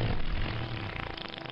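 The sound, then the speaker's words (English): A cartoon pig's fart sound effect as it tries to blow down a brick house: a long, low, buzzy rumble that holds steadily for about a second and a half, breaking into quick sputtering flutters toward the end, with no talking. “How do my farts not blow the house down?”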